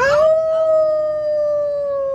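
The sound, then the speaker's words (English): A father and his daughter imitate a wolf howl, one long sustained tone that rises slightly at the start and then holds steady, loud, with no talking. “And I will howl. I won't show my daughter, but she'll howl with me.”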